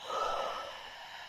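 A single long, breathy yawn during a tapping exercise, airy and fairly soft, swelling at the start and tapering off over about a second, with no talking.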